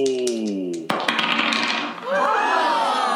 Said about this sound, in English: I'm going to roll a 20-sided die, and we are going to see what question pops up from that number I roll.